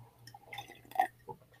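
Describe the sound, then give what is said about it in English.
A glass cup is set down on a hard surface with a faint, brief clink, followed by a softer second tap, over a low steady hum and no talking. “That's me putting the glass down.”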